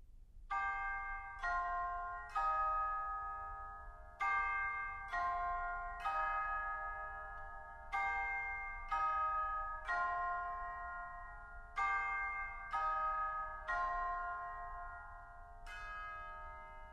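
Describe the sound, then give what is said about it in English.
Radio time bells marking noon or tea time: a peal of chiming bells rings out in a steady, repeating pattern, each strike clear and resonant with overlapping decays, carrying on for the whole stretch with no voices. “These days, as my own autumn beckons, there's something deeply comforting about the noon and tea time bells that ring out from the radio.”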